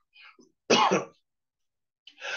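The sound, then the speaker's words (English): A sharp, harsh cough bursts out loudly, preceded by a faint breathy sound and followed after a short pause by a raspy exhale or throat noise, from a person who is sick with a sore throat and stuffy nose. No speech. “So hear me coughing and sneezing.”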